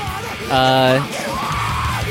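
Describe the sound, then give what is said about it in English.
A harsh screamed male vocal line from a metal song bursts out loud for about half a second, strained and sustained, then the music drops back to a lower, busier level. “Like, ooh, did he just scream, you fucking whore?”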